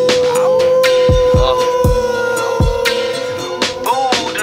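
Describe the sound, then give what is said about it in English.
A voice imitates a howl with one long, steady, wavering tone that holds for several seconds, fairly loud, over deep thumping beats and a busy musical background. “I should howl like the moon, like, ow.”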